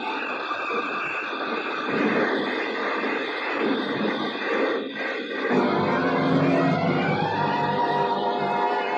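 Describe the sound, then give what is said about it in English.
A convertible car skids across loose gravel in a loud, continuous grinding rush, sliding sideways toward a cliff, then shifts partway through into a deeper, rumbling slide with engine noise underneath. No one speaks. “The car skidded on gravel and slid sideways toward the cliff.”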